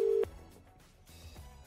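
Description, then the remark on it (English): The ringing tone of an outgoing phone call to a man's phone cuts in loud and steady for a brief moment, then stops, leaving only faint low background hum and quiet line noise. “So shall we give them a call now and give them the good news?”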